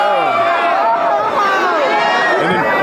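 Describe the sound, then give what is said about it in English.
A loud, dense crowd roar at a wrestling match, with overlapping shouts and chatter, sustained and steady across the whole stretch, with many voices rising and falling together. “Here comes the crowd reaction.”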